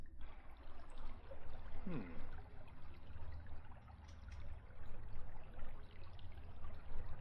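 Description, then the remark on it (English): Water rushing steadily in the background, a continuous low, churning wash that never lets up, with a brief faint chirp near the start and no voices. “You do still hear very faintly the moving water rushing in the background.”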